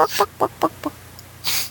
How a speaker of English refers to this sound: Oh, there goes the little chickens. Oh, no. Still clucking. Still clucking.